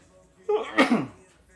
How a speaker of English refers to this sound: Hold on, I'm going to sneeze real quick here.